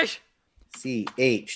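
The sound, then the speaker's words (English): A brief, sharp sneeze bursts out at the very start with a hissy, breathy release, then fades into a short pause before voices talk. “Bless you,”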